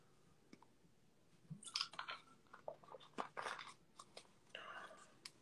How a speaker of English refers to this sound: Let me enjoy some of my hint. Oh, thanks, man. See if I can enjoy some of my hint water.